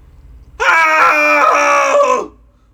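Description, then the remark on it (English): A loud, sustained cathartic group scream from several voices at once, bursting in abruptly on a count of three, holding steady for under two seconds, then trailing off into quiet. “Let's do a cathartic scream with us wherever it's safe, wherever you can do it without bothering anybody.”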